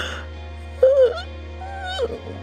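A drawn-out, full-body voiced yawn that rises and sags in pitch, followed by a shorter second yawning sigh, with a low steady hum underneath throughout.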